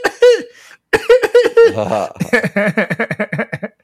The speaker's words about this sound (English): And I cough a lot. I cough more now since I had COVID.